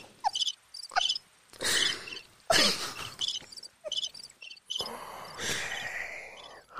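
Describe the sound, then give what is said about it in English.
Crickets chirp in quick, repeated high-pitched pulses throughout, clear, with a few breathy bursts of noise breaking in between the chirps. “Yeah, cricket treatment.”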